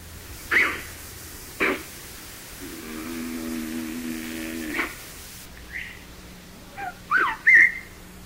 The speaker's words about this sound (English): You can clearly hear the human, the kind of muffled sort of whistle and whistling between their teeth.